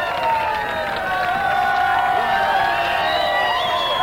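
A large square dance crowd of over 1,000 squares cheers and shouts wildly for a 17-year-old caller, a dense, steady roar of many voices with high whoops and yells rising above it, loud and sustained throughout.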